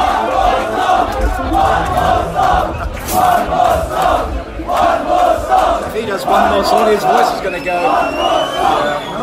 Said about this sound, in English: The crowd is gone berserk for Francis Leach. He is going to get cheered out of here.